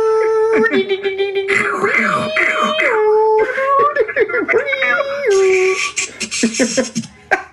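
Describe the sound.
A voice imitates a dial-up modem connecting: wavering, whiny tones that step up and down in pitch, then a burst of hissy static, ending in short warbling squeals, fairly loud throughout.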